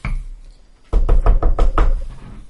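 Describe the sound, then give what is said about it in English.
A quick series of about six solid knocks on a door, evenly spaced and fairly loud, with a low thudding body to each rap and a short fade after the last. “So you knock on the door.”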